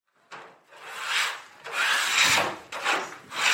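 A woman scrapes baking trays in a series of about five long, harsh rasping strokes, each a broad gritty hiss that swells and fades, with no voices.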